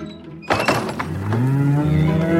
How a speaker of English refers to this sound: In the barn, milking the cows.